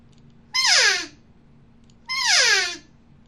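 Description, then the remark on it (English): Two loud, raspy elk cow calls blown on an open reed, each a high nasal mew sliding downward in pitch, separated by about a second of quiet, with no talking. “I'm going to blow a cow sound with this open reed.”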